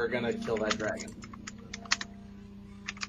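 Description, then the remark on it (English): Irregular bursts of computer keyboard typing, sharp clacking keystrokes, with a voice talking briefly at the start over a steady low hum. “I'm gonna smack you in a second for your keyboard.”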